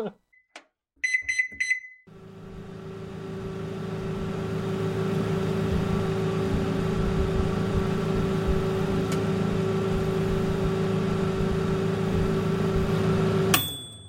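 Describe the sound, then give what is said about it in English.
A few short beeps as buttons are pressed, then a steady, loud microwave hum with a low drone runs for about eleven seconds before cutting off with a final beep. “I thought you wanted us to start the microwave right then somehow.”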